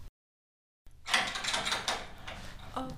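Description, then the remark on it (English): After a moment of silence, a door is opened with a rattling, scraping mechanical noise, a latch and hinges shifting for a couple of seconds. “go and open the door.”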